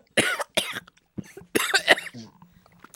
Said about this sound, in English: It just makes me cough. Why does it do that?